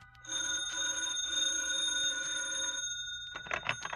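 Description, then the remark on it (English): An old-fashioned telephone bell rings as a hotel wake-up call left at the desk, in two long metallic trills with a short break between them, loud and bright, followed by a brief rustle as it stops. “I left a call at the desk, turned over, and closed my eyes.”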